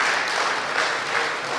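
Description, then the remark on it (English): Steady crowd applause fills the moment, a dense wash of many hands clapping at once, sustained and fairly loud with no voices on top. “You better clap, because otherwise.”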